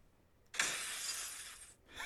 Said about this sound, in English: Eventually, he's interrupted by breaking glass. Let's see if I can do it here. Hold on. Wait.